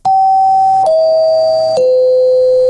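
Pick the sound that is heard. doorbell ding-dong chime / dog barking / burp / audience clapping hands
doorbell ding-dong chime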